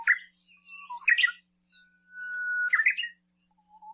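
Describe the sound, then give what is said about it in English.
Song of the uguisu, a Japanese songbird of dense understory vegetation: after a few quick chirps, a long, steady mid-pitched introductory whistle swells and then ends in a sharp, complex flourish, with no one talking. “The first has a long introductory whistle ending in a syllable.”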